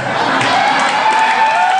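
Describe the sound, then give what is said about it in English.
A crowd yells "Hey, Prior!" together in one loud, sustained burst of many voices, with a few higher voices rising and sliding above the roar throughout. “We all yelled it.”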